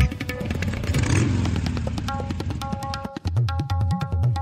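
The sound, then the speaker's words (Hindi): A motorcycle engine revs while riding with the Go Fast Don't Die squad from Wyoming around Chiang Mai, Thailand, its pitch climbing and dropping in repeated throttle blips over a steady low rumble, with a brief cut near the end before it roars back up. “We are here with The Go Fast Don't Die squad from Wyoming, and we are riding with them around Chiang Mai in Thailand.”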